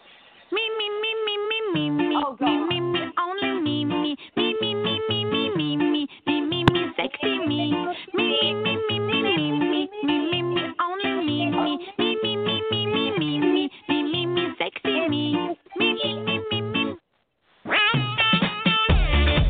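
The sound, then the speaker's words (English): The loud, pounding theme song of a wrestling radio show plays for nearly twenty seconds, built from chunky repeated phrases in a steady rhythm, breaking off briefly near the end before kicking back in. “With one of the most brain-thumping theme songs of all time.”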